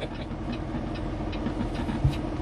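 The diesel engine of a new custom 2022 Peterbilt 389 semi truck runs steadily, a deep continuous rumble with a faint rhythmic chug, moderately loud, with no voices over it, as a 14-year-old drives it, floating its 18 gears.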